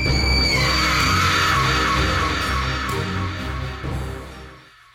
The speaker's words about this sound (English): Give a sinister scream for your host